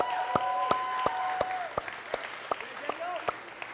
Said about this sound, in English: So just from the bottom of my heart, can we give them a round of applause and say thank you?